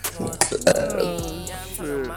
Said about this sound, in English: You coming back to burping the mic?